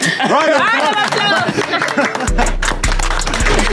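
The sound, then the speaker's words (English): A crowd erupts in loud cheering and whooping for a birthday, with dense clapping throughout, and a deep rumbling low tone joins in near the end. “Round of applause.”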